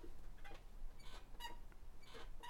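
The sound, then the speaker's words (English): A chair squeaks several times in short, irregular creaks with brief pauses between them, fairly quiet, with no one talking. “I hope you can hear my squeaky chair.”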